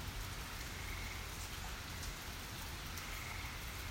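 Steady rain falls continuously in a park, a dense, even hiss of drops pattering on surfaces with a low rumbling undertone and no voices.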